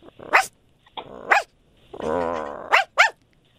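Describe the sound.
A person's voice imitates a dog on air on the radio, giving several loud barks with a drawn-out growling yowl in the middle, separated by short silences.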